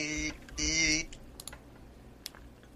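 Quick, scattered key taps from a computer keyboard as someone types a Google search, a handful of light clicks in an uneven rhythm, following two short bursts of a wordless voice.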